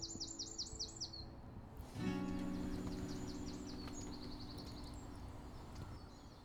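Birds chirrup in quick repeated trills in the morning, several calls overlapping in a steady outdoor chorus, with a low steady hum rising beneath them partway through.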